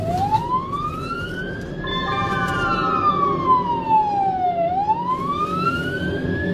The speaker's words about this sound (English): And we're going to play a little bit of audio, and this is a car chase, and I'll explain it.